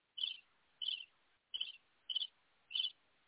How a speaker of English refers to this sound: Them birds loud.